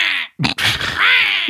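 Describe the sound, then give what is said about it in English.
A person croaks out a harsh, raspy imitation of a crow's caw, close and loud, with a short hiss and a brief pause before a longer strained, gravelly call. “You sound like a crow with COVID.”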